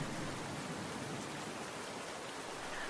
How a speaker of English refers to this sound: But we still didn't say much. Just listened to the rain.